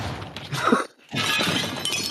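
glass breaking

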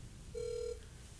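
outgoing phone call ringing

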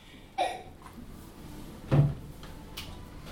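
door being opened

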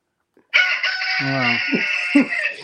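pet bird squawking

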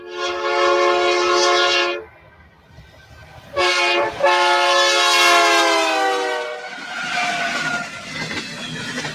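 freight train passing

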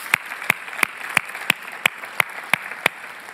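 audience round of applause

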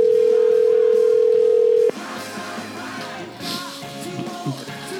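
telephone dial tone

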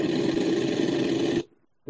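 automatic gunfire sound effect

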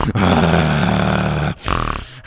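dog growling

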